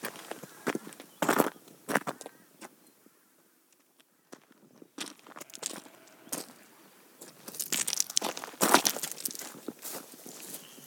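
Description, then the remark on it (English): Footsteps crunch along a rough valley path in an irregular walking rhythm, with bursts of gritty scuffing, a brief quiet pause midway, then heavier crunching steps toward the end. “And we'll walk a little bit further up the valley.”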